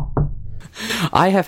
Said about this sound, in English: So great. Knocking on wood.